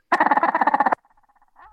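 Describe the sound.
A loud owl call blown with a rapid rolled trill, a single fluttering burst just under a second long, followed by a few faint, soft trailing notes.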